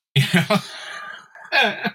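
A person overcoming a flu coughs in a loud burst of several rapid hacks, followed by a short raspy wheeze and a couple more harsh coughs.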